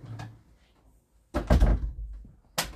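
A door swings shut with a solid, rattling thud midway through, bracketed by a light click near the start and a sharp latch-like snap at the end; no one speaks.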